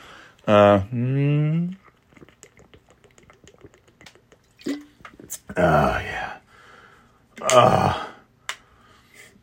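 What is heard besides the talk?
drinking water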